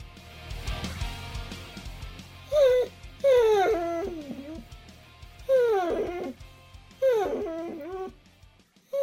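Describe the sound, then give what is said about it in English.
A basset hound named Boswell howls and whimpers in four drawn-out, wavering cries that rise and fall in pitch, clear, over a low background rumble. “Peter Johnson is a huge dog lover, and Boswell is a basset hound, a beautiful looking dog.”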